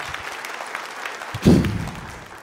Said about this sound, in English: Can we give Kaylee a round of applause?